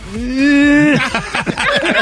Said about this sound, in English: That sounds like a hopeful sound effect to me. Yeah. Optimistic. That's a lion sound.